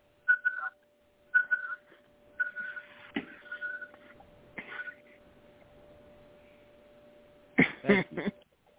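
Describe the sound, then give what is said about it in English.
A liquid level indicator hung over the top of a cup beeps repeatedly as the drink reaches the top, short high-pitched tones in uneven bursts over a faint steady hum, followed near the end by a couple of brief rustling noises. “But what my device does is goes, hear the beep? Yeah. That is what they call a liquid level indicator.”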